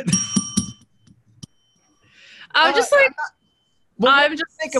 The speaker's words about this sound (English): Hit that bell.